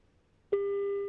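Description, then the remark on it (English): A phone call placed live on air rings on the line: after a half-second of near silence, a steady electronic ringback tone starts abruptly and holds evenly, fairly loud, until the end. “Well, his phone is actually ringing, so that's certainly a good sign.”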